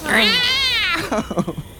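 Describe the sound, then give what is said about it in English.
A loud cat yowl rises and falls in a drawn-out wail for about a second as the cat lunges at someone, then breaks off as a person begins talking. “It's at this exact same moment the cat chooses to lunge at ….”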